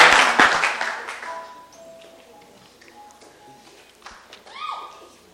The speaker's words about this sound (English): Clap your hands together for the Lord, and you may be seated.